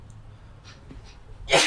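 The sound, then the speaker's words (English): A couple of soft, breathy inhales build up, then one loud, sharp sneeze bursts out at the very end, with no talking. “but like hold on, I gotta sneeze.”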